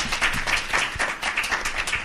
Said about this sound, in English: All right. Can we give them all a round of applause for their first answer?